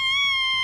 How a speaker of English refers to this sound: That's a wood duck call.